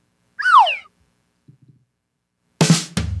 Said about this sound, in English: I think you get the idea. That's a gong. Okay, that's called Farrago, and it's by, let me see. Oh, it doesn't say. No, there it is. Rogue Amoeba.